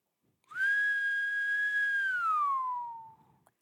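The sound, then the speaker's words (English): A person whistles one long, steady note that bends smoothly downward to a lower pitch near the end, clear, with no talking. “You don't know how to whistle? That's sad.”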